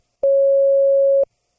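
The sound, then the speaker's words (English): A single loud voicemail beep, heard after a phone call went to voicemail following three rings: one steady, mid-pitched electronic tone held for about a second, starting and stopping abruptly, with silence on either side and no voices. “In apology, I give you this beep.”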